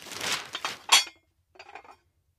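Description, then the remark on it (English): Dishes and cutlery clink and clatter as they are gathered up, with a sharp, bright knock near the middle, a short pause, then a few softer rattles. “I'd best clear the table.”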